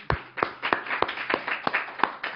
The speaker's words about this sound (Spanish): Ok, vamos a dar palmas al Señor por ellos también.